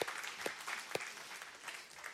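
A short round of applause: a dense, steady patter of many hands clapping at once, soft overall, with a few sharper claps standing out near the start and no voices.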